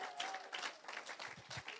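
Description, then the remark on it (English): A crowd applauds steadily to show appreciation, many hands clapping in a dense, continuous patter at an even loudness throughout, with no voices standing out. “And but I just wonder, without further ado, if we could just put our hands together and just show our appreciation.”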